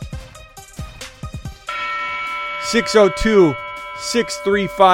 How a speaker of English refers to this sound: You heard the dong bell at the end of that.